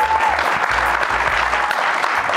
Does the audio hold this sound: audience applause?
yes